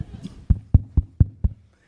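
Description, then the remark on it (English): Five evenly spaced knocks on the wooden door of the owner's apartment downstairs, fairly loud, with a steady rhythm and a low hollow thud to each rap. “So I knock.”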